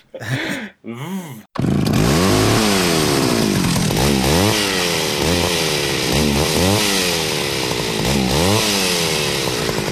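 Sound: chainsaw running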